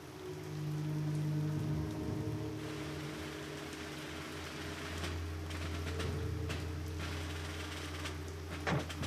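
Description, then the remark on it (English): Steady rain pours down on a cold night, a dense hiss with scattered sharper drips and taps, over a low continuous droning hum. No one speaks. “Now, when I watched this film, I just assumed that his arrival on a cold and rainy night was created for dramatic purposes.”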